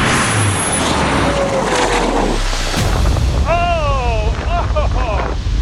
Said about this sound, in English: Third try, the car hit 141 miles per hour, but the wind blew the car off course, and that's when it exploded.